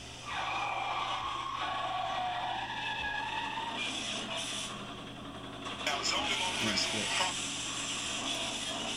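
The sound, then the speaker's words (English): Tires screech in long, wavering squeals as cars skid during a stunt show, loud and continuous over a roaring engine and noisy background, with a burst of harsher scraping near the end. “Oh shit, they flung the cars away.”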